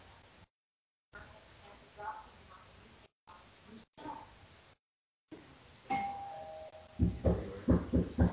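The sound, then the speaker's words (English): A doorbell at the speakers' door chimes once, its clear ringing tone hanging and slowly fading, then a quick run of loud, rhythmic low bursts follows. Faint, muffled voices murmur before the bell. “Well, someone's at our door.”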